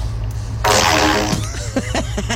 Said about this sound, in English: I'm at Home Depot with the pipe, and I'm going to fart in it.